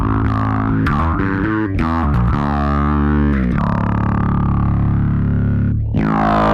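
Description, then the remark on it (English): A loud, gritty bass guitar pushed through an envelope filter, each note opening into a quacky, sweeping wah. It plays a short riff, then sustains a long, growling held note on its own. “Because that's envelope. And then the speed affects the sensitivity, I would guess.”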